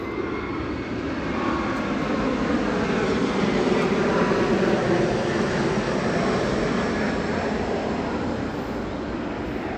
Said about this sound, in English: And here comes the airplane right at that point.